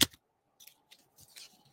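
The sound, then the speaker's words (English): A sharp snap at the start, then a few soft crinkly rustles and light papery scrapes, quiet, as a deck of cards is opened and cards are slid out. “I'm going to go interview deck two. The dicks. Once again, I am not going to shuffle. I am going to open.”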